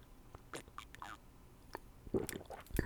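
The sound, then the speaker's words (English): Quiet sipping of hot black coffee from a freshly poured second cup: a few short slurps and soft mouth and swallowing noises spread over a few seconds, with no talking. “I'm going to take a quick sip now.”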